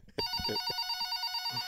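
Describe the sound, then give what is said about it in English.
A telephone rings while another person is being patched into a call, a steady, buzzing electronic trill that starts abruptly and carries on without pause, loud, with faint low thumps underneath. “Well, yeah, I think he's got to call that person. Let me patch him in.”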